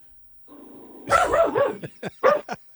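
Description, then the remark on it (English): A dog, a watchdog sitting up in a window ledge at a home in La Jolla by the beach, lets out a low whine that rises into a drawn-out, wavering bark-howl, then fires off three or four short, sharp barks in quick succession, clear with no talking. “And about your dog that's in the background.”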